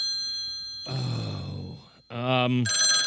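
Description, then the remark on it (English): A telephone rings with a steady, loud electronic trill, cutting out briefly while a voice speaks over it, then ringing again at the end. “Adam, answer the phone.”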